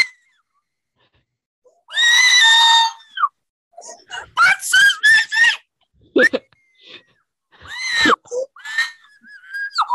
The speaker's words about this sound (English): you're screaming so loud that it's like I can't hear it.